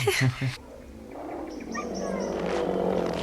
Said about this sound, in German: Oh. Ich mag keine großen Hunde. Schon gar nicht, wenn sie auf mich zulaufen.